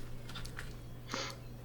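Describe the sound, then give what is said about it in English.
A few crisp crunches as a person eats pistachios and cracks the shells, with small cracks followed by one louder crunch, all over a steady low electrical hum. “trying to make a funny joke that he's eating pistachios loudly, but without realizing that, I can just silence the audio.”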